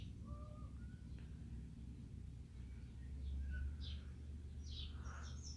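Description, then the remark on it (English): Scattered bird chirps and short calls ring out outdoors, irregular and fairly faint, over a steady low rumble of background noise with no one talking. “These fucking birds is pissing me off, man.”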